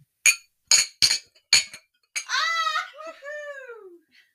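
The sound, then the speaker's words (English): Four bright, ringing glass clinks in quick succession, close to the microphone, like glasses touched together in a toast, followed by a couple of excited, high voices exclaiming. “Cheers, everyone. Cheers to the queers.”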